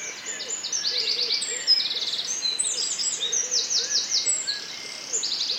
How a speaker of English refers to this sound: All of these come out of this simple act of simply going outside first thing in the morning. I really felt like the sort of sound of the birds came in waves, which I was really enjoying. It was enchanting.